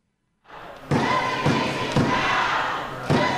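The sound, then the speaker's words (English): A protester pounds on wooden benches in meeting chambers: heavy, steady loud thumps about every half second over the roar of an excited, shouting, chanting crowd. “I think I could be wrong, but I think he was hitting hitting like the wood benches, right?”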